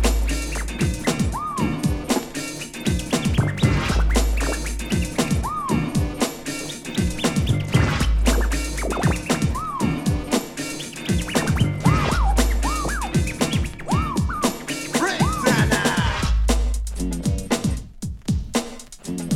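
Early UK hip hop track with a heavy beat and repeated turntable scratches, quick rising and falling squiggles cutting in every few seconds over a dense, loud mix.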